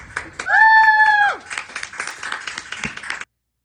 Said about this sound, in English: It was one person that was applauding. No, there was a couple. It sounded like one. It sounded like the camera girl put down the camera and started clapping her hands.